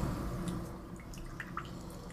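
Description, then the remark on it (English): A few small drops of water plink softly into a glass as a little water is added to a drink, scattered irregularly over a low, steady background rumble with no one speaking. “So I think I'm going to try and do light water and then a little heavier water and see how that plays out.”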